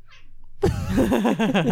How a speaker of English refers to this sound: Your cat's got a lot to say. I know, she is talkative today. She wants talking to the mic. Come here, Molly.